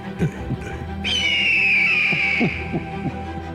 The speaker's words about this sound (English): I always think it's a crow, but he says it's an eagle, ladies and gentlemen. I think it's a crow. It's an eagle. It's America.